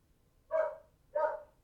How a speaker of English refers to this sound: Oh, sorry, my wife just got home, and my dogs are gonna bark for a little bit.